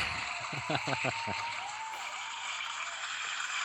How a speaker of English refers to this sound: That's way too much applause for... The handful.